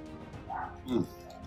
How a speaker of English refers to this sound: This fucking dog barking outside. Perfect. Let's wait for this dog to stop barking.